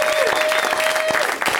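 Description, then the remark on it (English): A crowd applauds as Natasha Leggero is introduced, a dense wash of clapping at an even, fairly loud level, with a sustained whistle-like tone running through the first part. “They were applauding their disinterest in everyone else.”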